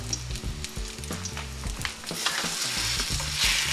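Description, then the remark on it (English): Chicken schnitzel coated in egg wash and breadcrumbs fries in a pan with a steady, bright crackling sizzle and scattered sharp pops, growing slightly louder toward the end, with no one speaking. “A couple of minutes, turn it on the other side, and you'll have chicken schnitzel.”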